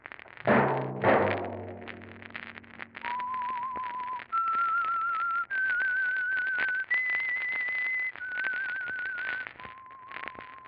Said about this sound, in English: That whistle be your signal for the Signal Oil program, The Whistler, each Wednesday at the same time.